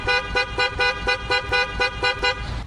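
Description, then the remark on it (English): A novelty car horn blares a rapid, bouncing melody of repeated bright tones, about eight quick pulses in a steady rhythm, loud with no talking. “great moments in honking history. The horn that Rodney Dangerfield had in Caddyshack. That's the horn that I want on my car”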